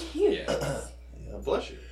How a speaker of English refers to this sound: Bless you.